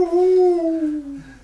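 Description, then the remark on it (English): An owl gives a single long, drawn-out hoot that holds steady and slides gently lower in pitch before fading, with no other sounds around it. “Yes, that's an owl.”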